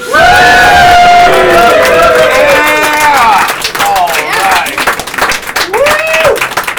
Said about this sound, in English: please whoop and cheer for the guy who's already standing in front of the stage.